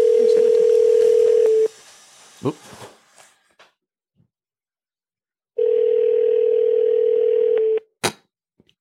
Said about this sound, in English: Let's call him and see if he answers. What's his phone number?